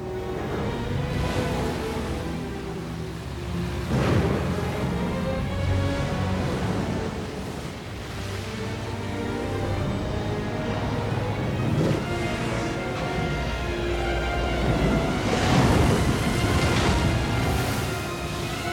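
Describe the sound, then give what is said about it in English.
A loud, roaring storm at sea: heavy waves crash and surge continuously while strong wind howls, with bigger swells breaking around the middle and near the end, overwhelming. “We don't know when the storm kicks up.”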